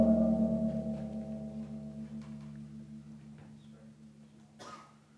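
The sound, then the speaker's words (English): A gong struck with a mallet rings out with layered, shimmering low tones that hang in the air and slowly fade over several seconds, with a brief soft noise near the end. “You're hitting it with a mallet.”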